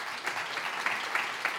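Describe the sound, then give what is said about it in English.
A crowd applauding steadily, dense clapping spread across the whole moment at moderate volume, with no voices standing out. “well, first, applause again.”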